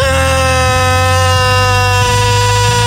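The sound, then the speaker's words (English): An electric air mattress pump inflating an air mattress in a house at 11:30 at night runs at full blast, a loud, steady buzzing drone with a rich, harsh hum that barely wavers in pitch for the whole stretch, with no voices. “Why is every single air mattress pump so loud?”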